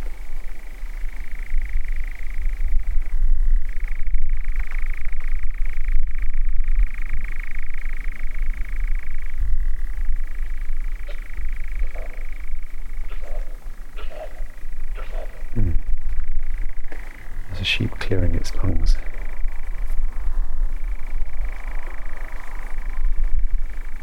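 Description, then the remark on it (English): A male nightjar churrs in a long, unbroken mechanical trill that holds a steady pitch throughout, over a low rumbling background, with a few brief sharper calls breaking in near the end. “So it's the male who chirs.”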